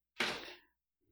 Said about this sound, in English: He is here, very loudly bursting through the door.